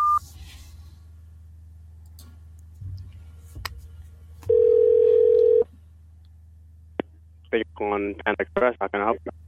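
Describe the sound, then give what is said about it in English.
A loud, steady telephone dial tone hums for about a second after a few faint clicks and taps, followed by quick bursts of a voice. “I'm going to call you right back.”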